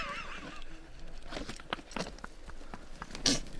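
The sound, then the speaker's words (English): A four-week-old cougar kitten snarls and hisses while swinging at a person's face, starting with a wavering growl, then several short raspy bursts and a sharp, loud hiss near the end. “Took a swing at you. Yeah, that was a hiss. A snarl.”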